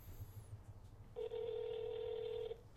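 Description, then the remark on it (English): A single ringback burst from an outgoing phone call: a steady electronic tone lasting just over a second, heard clearly over a low background hum, with no one talking. “Boo's brother phone call. Maybe he'll pick up.”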